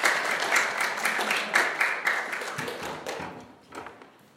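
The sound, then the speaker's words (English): An audience applauds a woman invited up to share, with a dense, steady patter of many hands clapping at moderate volume, thinning out and fading over the last second or so. “Give her a bit of a round of applause and encouragement.”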